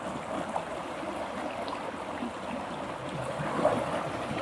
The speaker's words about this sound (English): The river's doing the river's thing.